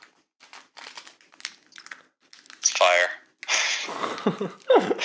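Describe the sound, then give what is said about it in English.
Crinkly plastic chewy bar wrapper rustling and tearing open, in a few loud bursts of crackling, with softer handling noises in between. “I got a couple chewy bars here.”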